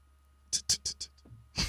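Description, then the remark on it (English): A voice imitates rolling dice with a quick run of five crisp, breathy rattling bursts, then one longer shake at the end, fairly quiet. “Yeah, we have to roll the dice.”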